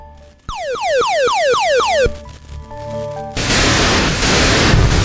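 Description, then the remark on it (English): Retro arcade game sound effects: a rapid series of descending electronic whistles like falling missiles, a steady synthetic hum, then a loud burst of harsh static-like explosion noise. “That Missile Command? It is Missile Command!”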